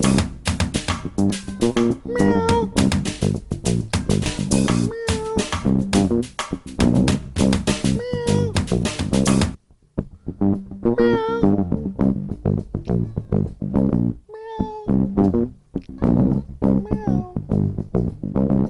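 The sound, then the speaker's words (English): A cat meows repeatedly against a dense musical backing, the mewing calls rising and falling in pitch, loud, continuing through a brief drop in the music partway through. “Meow. Meow.”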